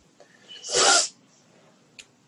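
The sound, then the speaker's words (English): One big, forceful sniff from someone with bad allergies, a loud breathy burst lasting under half a second, followed by quiet and a faint brief click. “That you have to take a shot for how big that sniff was.”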